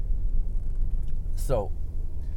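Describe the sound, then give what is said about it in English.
Steady low road and engine rumble from inside a moving modern car with all-wheel drive, four-wheel drive off, pulling out onto a highway on hard, dry pavement, with a brief rising-and-falling squeal cutting through about halfway in. “All-wheel drive, just getting out onto the highway here, now I'm on hard, dry pavement.”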